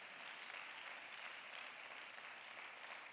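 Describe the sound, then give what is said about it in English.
Sustained applause from an audience, a dense, steady wash of many hands clapping at once with no pauses, holding an even loudness throughout. “That's a valid hand clap right there.”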